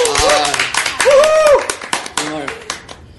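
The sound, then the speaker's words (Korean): Several people clap their hands in a rapid, irregular burst of sharp slaps lasting a few seconds to welcome the first actress guest on the show Baeu Salon (배우싸롱), while excited voices whoop and exclaim over the clapping. “아, 좀 너무 경이로운 일이라 배우싸롱 탄생 이래 저희 여배우분을 처음 모시니까 박수 한번 치고 가요.”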